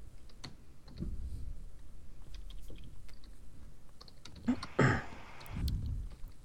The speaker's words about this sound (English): And while he's typing that